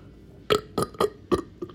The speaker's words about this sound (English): Oh, that burp had dimensions. It smelled like cucumber.